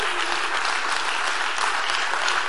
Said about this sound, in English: Why don't we offer the Lord a hand clap of praise tonight?